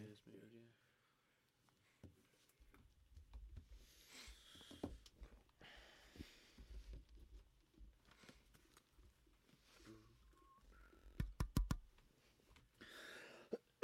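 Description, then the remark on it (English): A quick cluster of three or four short, sharp coughs breaks an otherwise quiet stretch dotted with faint clicks and soft low rumbles. “Just apologies for like the coughing.”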